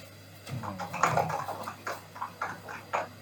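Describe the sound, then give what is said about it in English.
Keyboard typing: a quick, irregular run of crisp clicks and taps lasting a few seconds, moderately loud over a faint steady hum, with no voices. “That is some nice typing sound.”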